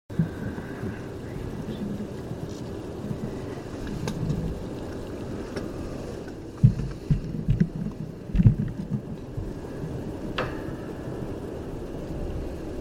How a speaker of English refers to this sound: Did you hear that? I've got a big wood knock.